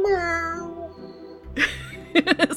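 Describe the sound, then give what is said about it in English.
A male cat lets out a single drawn-out, squawking, bird-like meow that slides downward in pitch, fairly loud, followed by a few quick voice-like bursts. “Is the meow? Is that no? He squawks, like a bird.”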